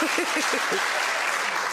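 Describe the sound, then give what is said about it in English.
A crowd applauds loudly and steadily, a dense wash of many hands clapping together, with a few brief voice-like calls or cheers rising over it near the start. “OK, clap. stop.”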